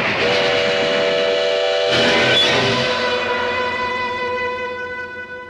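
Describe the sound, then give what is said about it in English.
A loud, sustained train whistle blows steadily for several seconds with a harmonic, chord-like tone, swelling briefly midway with a burst of steam before slowly fading. “Train. I don't want to get back on that train.”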